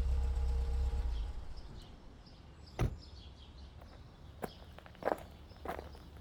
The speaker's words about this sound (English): There's a truck coming up the road. All right, let's get out of his way so it could get by. Oh, look, it looks like it's stopping.